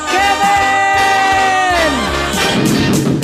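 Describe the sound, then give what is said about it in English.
A single loud, drawn-out human scream holds a high pitch for nearly two seconds, then slides downward and gives way to a noisy, crowd-like clamor. “Yeah, I can tell by that scream.”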